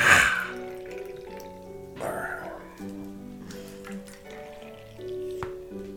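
A drink being poured into a glass, with a splashy start and gurgling liquid that carries on for several seconds, moderately loud, with a faint voice.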